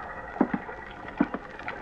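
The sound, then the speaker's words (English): Soft water laps and slaps against wooden boat hulls at a small ramshackle pier with a couple of beat-up boats tied to it, early in the morning, in gentle paired splashes over a quiet, steady background with no voices. “Then early next morning, I went out to the little pier. It was a ramshackle affair with a couple of beat-up boats tied to it and an old character fumbling with the door of a little bait shack.”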